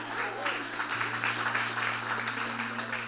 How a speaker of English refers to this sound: I'll tell her you clap for her.